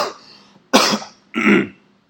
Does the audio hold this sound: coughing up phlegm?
yes